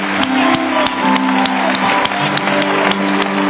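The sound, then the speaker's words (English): An audience claps together during worship to applaud God's glory, a dense, steady, loud wash of applause with sustained musical tones humming underneath throughout. “Go ahead and applaud His glory together.”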